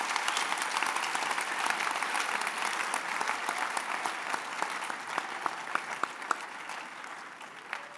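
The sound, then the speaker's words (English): An audience applauds for Jesus in a dense, steady roar of many hands clapping, then the sound thins out toward the end into scattered individual claps. “We didn't clap for Jesus.”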